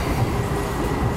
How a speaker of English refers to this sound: Here we go. Listen. Oh no, it's a DLR.